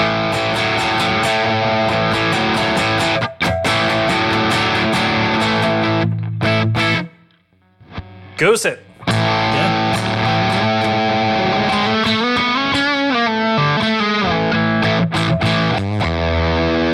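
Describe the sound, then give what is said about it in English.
A loud, heavily distorted effects unit tone crackles and shifts as its knob is turned, cutting out briefly midway before returning with warbling, wavering pitch sweeps. A short spoken remark is heard. “Oh, and you can hear it revising when you turn the knob. Oh, you hear it crickling? Yeah. Crickling, crackling.”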